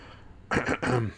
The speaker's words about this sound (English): That's … clearing his throat.